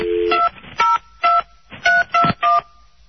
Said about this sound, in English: Here we go. As I'm dialing them up.